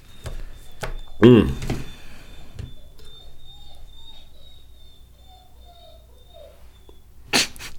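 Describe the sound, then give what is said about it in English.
A dog lets out a single loud, sharp snort, followed by quieter rustling and faint snuffling, with another brief noisy burst near the end. “Let's close this out before I punch this dog in the face.”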